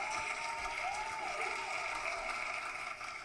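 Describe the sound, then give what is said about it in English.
A clapping sound effect: a steady wash of applause from many hands, dense and loud throughout with no gaps, like a crowd clapping continuously for a few seconds. “Yeah, hit him with the clap, dude.”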